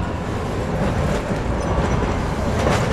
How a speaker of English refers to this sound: Here, the Green Line subway runs above ground, down the middle of Commonwealth Avenue, past a world array of ethnic restaurants, bars, and clubs.